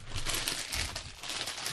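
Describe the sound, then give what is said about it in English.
A crinkly plastic snack bag is torn and crackled open, a steady burst of bright, rustling crunches that fills the whole moment with no voices. “You want to crack them open now, or are you going to save them? I'm cracking them right now.”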